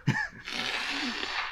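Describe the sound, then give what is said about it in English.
A loud nose blow right into the microphone, during pollen season allergies: a short voiced onset, then a sustained rushing, honking exhale of air lasting over a second. “Let me blow my nose.”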